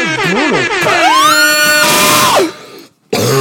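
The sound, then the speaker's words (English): A loud, high-pitched scream drawn in on an inhale into a microphone, rising and holding a strained, piercing tone for over a second before breaking off, preceded by wavering vocal sounds. “That sounded like I actually just screamed at the top of my lungs. That was during inhalation, just so everybody knows.”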